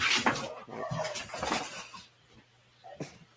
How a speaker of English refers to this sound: Sorry, my dog's just decided to like get up.